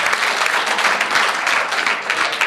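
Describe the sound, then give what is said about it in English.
An audience claps steadily at the end of a talk, a dense, sustained patter of many hands at an even loudness with no voices cutting through. “And again, I ask you for a warm round of applause.”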